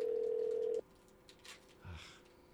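A steady electronic ringback tone from an outgoing phone call to a friend hums loudly for under a second, then cuts off abruptly, leaving faint rustling and near silence.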